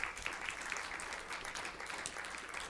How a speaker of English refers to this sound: Oh, give the Lord another hand clap. Hallelujah.